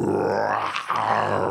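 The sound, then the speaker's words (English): A person voices a loud, throaty growling roar, attempting a lion and turning it into a bear halfway through, with a brief catch partway through before the rumbling roar resumes, continuous. “Honestly, I was going to do like a lion, and then halfway through it, I realized that I couldn't do a lion, and I tried to morph it into a bear.”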